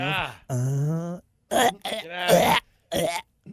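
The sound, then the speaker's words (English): A person vocally imitates hacking up a hairball: a series of loud retching and gagging noises with throaty groans and harsh coughing bursts, ending in a short final hack. “I coughed up a hairball.”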